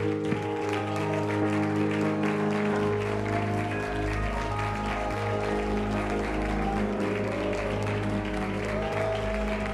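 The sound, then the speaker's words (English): A large audience at a church service claps loudly and continuously, a dense wash of applause held under sustained musical tones that play steadily throughout. “Come on, if you believe God's going to do something, would you clap your hands as loud as you have all service?”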